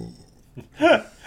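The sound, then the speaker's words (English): A person imitates a burp with their voice, a short, loud, throaty belch-like sound, preceded by a brief grunt and followed by another short vocal noise. “That is what a bed would sound like if it burped after eating two humans.”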